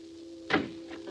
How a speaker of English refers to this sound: Door's open. Let's go in.